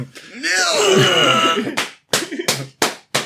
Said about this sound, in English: I don't understand why he's slapping. I don't understand either.